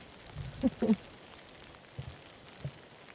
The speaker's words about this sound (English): It's raining quite steadily here now, so...